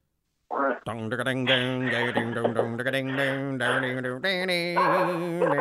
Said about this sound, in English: Oh, jeez. You got your dogs going crazy. Yeah, again.